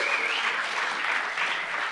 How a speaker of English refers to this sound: You can clap. You can be excited.